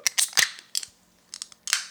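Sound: beer can being opened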